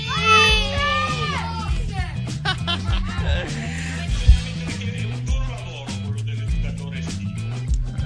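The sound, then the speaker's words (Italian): A group of children shout a reply together in high, bright voices, a short burst near the start that rises over a steady backing of music, which continues after the shouting stops. “Sentiamo se i bambini ci sono. Ragazzi, ci sarete a Radio Alba Festival?”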